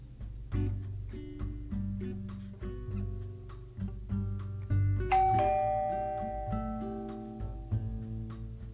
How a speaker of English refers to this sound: When your grandpa rings the doorbell, what should you do?